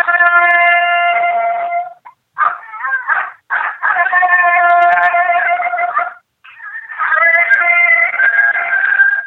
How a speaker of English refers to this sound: Coyote pair is an awesome sound this time of year when you want to sound like a pair of coyotes that's moved in on another pair. If I know there's a pair of coyotes, I like to play this sound.